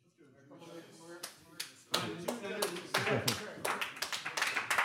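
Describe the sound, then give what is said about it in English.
Sparse, polite golf claps from a few people, sharp slaps landing at an unhurried, uneven pace that builds slightly, with murmured voices talking underneath. “That's the longest golf clap ever.”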